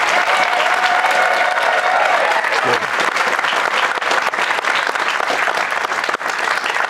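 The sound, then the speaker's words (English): A crowd gives Cody Feger a sustained, loud standing round of applause, a dense wash of clapping that holds steady for the whole stretch, with a faint tonal hum in the first few seconds. “I mean, listen, Cody gets a standing round of applause.”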